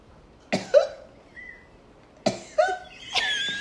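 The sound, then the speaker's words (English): A theatrical, exaggerated hacking cough in two raspy bursts with a short pause between, loud, ending in a wheezy, strained rasp with no talking. “Like he just did with the cough.”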